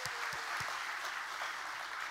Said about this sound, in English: So Journey Church, let's give them a great big hand clap to welcome them today.